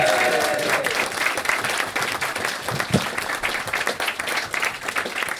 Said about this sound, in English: Let's have a round of applause for the noodle set.